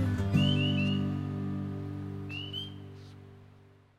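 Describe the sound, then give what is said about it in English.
Early spring birds chirp in two short bursts of quick, rising whistled notes, fairly faint against a steady low droning hum that fills the background; no one speaks. “I can't help but just marvel over all the bird sounds. So many early spring bird sounds.”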